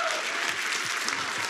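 A church audience applauds steadily as Salt Company college ministry staff are welcomed up: a dense wash of many hands clapping at an even, moderate loudness throughout, with no single clap standing out from the rest.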